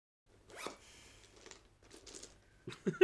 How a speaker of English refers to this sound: It was the fact that I heard this zip going.